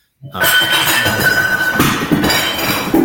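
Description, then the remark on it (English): Cats knock over hard objects, causing loud clattering and clinking with bright metallic and glassy rings sustained over a few seconds of busy, jumbled impacts. “My cats just made a mess.”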